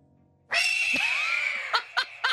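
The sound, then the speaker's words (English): A harsh, grating bird call: one long, loud, raspy screech that fades slightly, followed by three short, sharp bursts in quick succession, with no voices. “Not so calming bird sound.”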